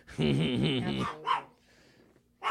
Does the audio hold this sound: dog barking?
yes